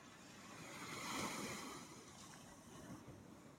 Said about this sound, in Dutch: Ja, ik ben aan de zee.